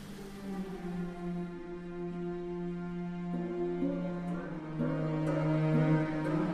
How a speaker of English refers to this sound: You're hearing an excerpt of his first piece of organic music, written in 1998, his Water Concerto for Water Percussion and Orchestra